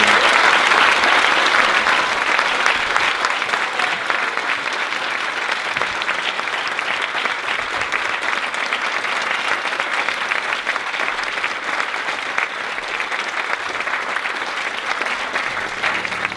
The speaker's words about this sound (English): Let's give Rupert a huge round of applause.